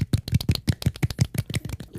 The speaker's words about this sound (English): Can we give a little golf clap for our Lithuanian listener? Yeah. Let's give a golf clap.